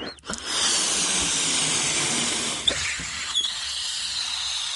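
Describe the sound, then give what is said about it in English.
Air hisses steadily out of a deflating balloon attached over a cardboard tube on a CD hovercraft, holding the CD aloft above a tabletop; a broad continuous rushing sound that lasts several seconds with a couple of small clicks, no voices. “The CD was held aloft above the tabletop by the balloon for the time you heard it going down, and it was just literally floating around, and you could actually knock it around.”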